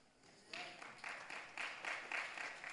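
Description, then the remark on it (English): About five scattered hand claps from a small audience, a short uneven patter of soft claps that starts after a brief pause and continues to the end. “Even when, thank you for those five claps, even when you have forsaken God, God will not forsake us.”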